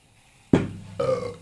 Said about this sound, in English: It does make you burp. Well, if it's anything like the other one, if it's anything like Topo Chico, it's going to be pretty carbonated.